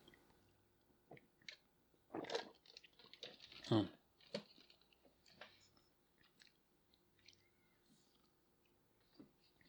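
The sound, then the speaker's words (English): Sips from a Coke, with a couple of louder slurping gulps followed by soft wet mouth clicks and swallows, otherwise quiet. “Let me just get a sip off of my Coke here because my throat is drier than sandpaper.”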